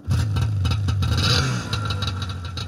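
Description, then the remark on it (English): A loud snowmobile engine drones steadily, then revs up briefly in pitch before settling back into a rough, rattling idle-to-mid throttle hum. No one speaks. “There was definitely this huge sense of freedom that I got riding the snowmobile.”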